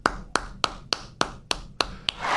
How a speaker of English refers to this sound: Congratulations. I mean that. Congratulations. Am I the only one clapping or?